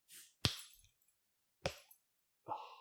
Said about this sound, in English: I tried to remember to open the bottles when we are on the air